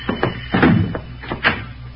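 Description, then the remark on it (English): A series of firm knocks on an unlocked wooden door, about half a dozen raps in an uneven rhythm, moderately loud, with no one speaking. “Come on in, Johnny boy. The door ain't locked.”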